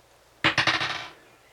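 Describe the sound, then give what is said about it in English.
Dice clatter sharply onto a hard table as a player rolls for an intimidation check in a game: a quick burst of several rattling clicks that bounce and fade within about half a second, with no voices. “Aren't you glad I bought you those dice?”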